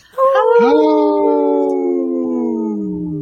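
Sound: wolf howling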